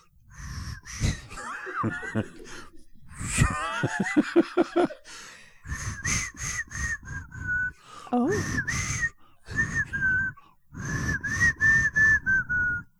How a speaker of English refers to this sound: Can you whistle? Give me a tune. Bewitched. What do you want? Bewitched. Are you going to hear the theme from Bewitched? Yes, I would like. Whistled? Okay.